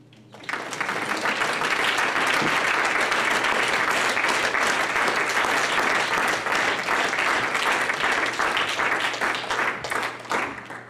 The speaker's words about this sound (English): Was there somebody else? Just put your hands together and clap your hands unto the Lord.